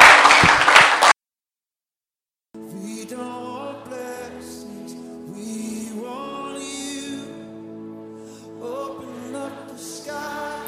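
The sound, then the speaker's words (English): An audience claps a clap offering to the Lord as it is seated, a loud, dense burst for about a second before it cuts off abruptly. After a short silence, sustained keyboard or organ music plays with no voices. “You may be seated with a clap offering unto the Lord.”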